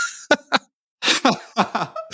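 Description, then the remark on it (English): A loud coughing fit: two sharp coughs, a short pause, then a rapid string of harsh, rasping coughs in uneven bursts, with no talking. “Anyways, sorry, I won't get into any metaphors that will just get drowned out in a coughing fit from me.”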